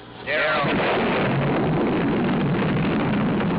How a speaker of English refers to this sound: the famous Lyndon B. Johnson ad with the little girl counting down and pulling the leaves off a daisy and then a nuclear explosion.